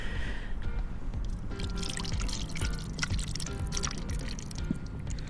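Thick miso liquid being poured from a small handmade vessel with wonky walls, a steady splashing trickle that runs continuously for several seconds with small glugs and drips, and no voices.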